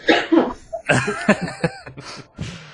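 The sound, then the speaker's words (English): Several harsh, wet coughs burst out in quick succession, irregular and loud, with some throaty, laugh-like breaths mixed between them. “And then you tear it away so you can cough.”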